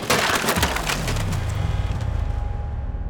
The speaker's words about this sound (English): Open up, or we'll break down the door. Break it.